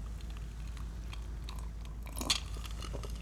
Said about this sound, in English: Let me take one final sip.